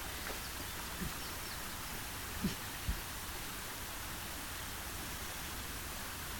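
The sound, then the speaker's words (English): Steady, hissing rush of flowing water in Big Darby Creek, running high after lots of rain, fills the scene, constant and moderately faint, with a few soft knocks or taps breaking through briefly. No one speaks. “It's cool you can hear water.”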